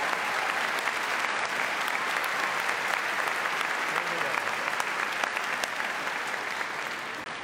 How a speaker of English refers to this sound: let's give these young folks another round of applause. They've been exceptional today.